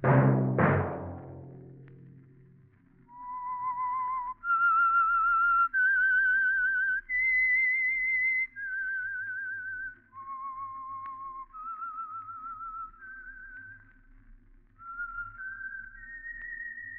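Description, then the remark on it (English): A lone whistled melody, the signature theme of the radio program The Whistler, carries a slow, eerie tune of sustained, gliding notes, clear, after a brief low thump at the start, with a faint hum underneath. “That whistle be your signal for the Signal Oil program, The Whistler, each Wednesday at this same time.”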